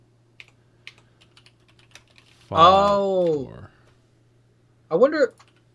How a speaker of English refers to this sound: What are you clicking? I'm looking up Brazil Ultimate.